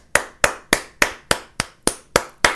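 Hands clapping in a steady, even rhythm, about nine sharp claps roughly three per second, crisp, from what sounds like a single person. No voices.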